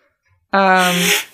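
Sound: sneeze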